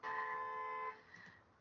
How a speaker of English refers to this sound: It happens, and car alarms also happen.